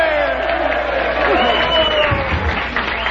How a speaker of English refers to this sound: Hey, give them a big cheer before they leave. Hey!